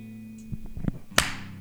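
One sharp hand clap cracks out loudly and fades with a short bright tail, preceded by a couple of softer thuds over a steady low hum.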